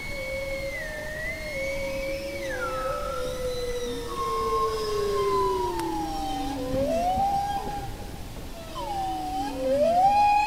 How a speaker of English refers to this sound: Like humpback whales, bowheads sing long, complex songs, but a recent study found that while humpbacks tend to repeat their songs in a fixed structure, bowheads change them up. They improvise.